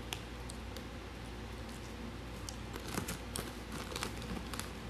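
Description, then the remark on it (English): Quiet rustling and crinkling of paper being handled and folded into a paper football, with scattered soft crackles and small clicks over steady low background noise; no one speaks. “The caressing of the paper.”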